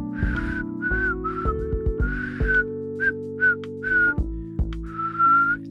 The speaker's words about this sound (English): I'll give you a second, and I'll whistle while we wait.